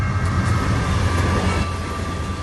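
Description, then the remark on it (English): A train rolls steadily along the rails, a dense continuous rumble with a faint high whine riding over it, loud with no voices. “An exodus of 100,000 people began by train and road.”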